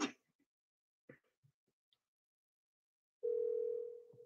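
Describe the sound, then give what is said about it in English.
A few short clicks and taps as a phone number is punched in to make a call, then a steady, loud telephone tone hums on for about a second. No one speaks and there is no answer. “Oh, man, I'm punching your phone number when I call. No answer.”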